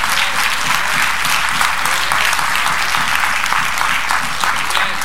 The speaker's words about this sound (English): Now, don't do that, because you didn't clap like you mean it. You didn't clap like you meant it.